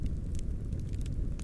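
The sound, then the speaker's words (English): A campfire burns with a steady low roar, broken by scattered sharp crackles and pops; no voices. “After weeks of watching it burn, I began to suspect that the fall's magic was the force tending to the flames, and soon came to know that the campfire served a purpose beyond warming passers-by and lighting their way.”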